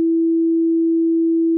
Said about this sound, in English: The sine wave is the simplest kind of waveform and consists of only one frequency.